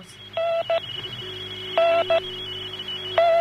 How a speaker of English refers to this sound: That's like sounds like Morse code.